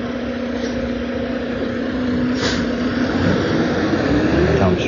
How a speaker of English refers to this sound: Dump truck on the next block.